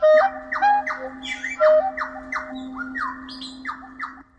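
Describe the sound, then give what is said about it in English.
A nightingale sings a rapid series of sharp, descending chirps and brief pure whistles, phrases tumbling one after another, with a steady low hum running underneath. “And then finally, the most superior top nightingales just ignore what you do and just maybe they sing, maybe they don't.”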